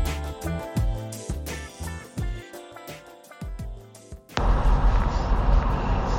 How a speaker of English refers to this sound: Well, hello everyone, I'm actually in the car, in my car, driving to Preston in Lancashire, and that's not particularly interesting